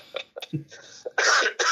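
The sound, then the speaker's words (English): Loud coughing: a few short throat-clearing grunts, then two harsh, breathy coughs in quick succession. “Let's hear some more coughing.”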